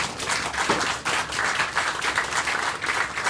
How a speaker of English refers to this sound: Round of applause, please, for our panel.